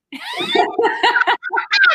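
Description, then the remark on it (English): A cat meows during an interview call in a quick string of short, high-pitched cries, with brief laugh-like vocal sounds mixed in. “Girl, anytime a cat crashes the interview, it makes it even better.”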